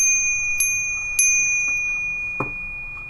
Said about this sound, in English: Did your bell ring? I didn't even hear it. Ring? Yeah? Okay. It rang.